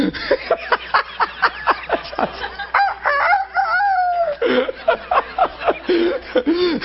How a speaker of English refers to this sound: Did you ever go in a barnyard and the old rooster meet you on the lane? There's big cows and horses, but he rules the place. He's out there.